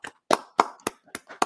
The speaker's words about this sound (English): And the Brooklyn Nets' first victory of the young season. Round of applause.